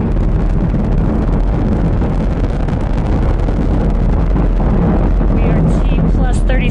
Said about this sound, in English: All right, so that audio was just the launch-off sequence from Endeavor taking off from Florida on its way to the International Space Station, a successful launch